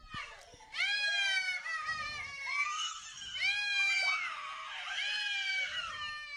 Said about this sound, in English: She's screaming like a crazy person with a scary mask on. Now she's going into another classroom right now. She's walking into another classroom.